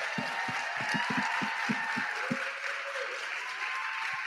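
A crowd applauds steadily for a few seconds, the many overlapping claps forming a dense, even wash of sound with some individual sharper claps standing out at the start.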